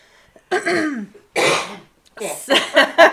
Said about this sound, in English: So I'm going to cough because I have allergies.